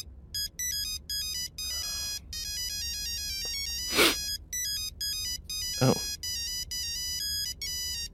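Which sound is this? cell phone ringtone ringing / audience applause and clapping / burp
cell phone ringtone ringing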